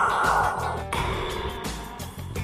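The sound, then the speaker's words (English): Heavy, hissing breaths drawn through an N95 coronavirus mask, alternating inhale and exhale in a slow rhythm; a person deliberately imitating Darth Vader's mechanical breathing. “I'm breathing through my N95 coronavirus mask.”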